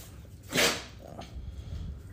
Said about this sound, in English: Sorry, my dog was sneezing a lot, which I'm sure you heard.